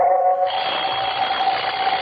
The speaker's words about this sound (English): Coming awake, I heard the alarm we'd set go off. The alarm stopped.